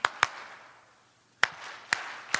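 Sharp hand claps in a rhythmic pattern: two quick claps, a pause of about a second, then three more evenly spaced claps. Crisp and fairly loud, with no talking.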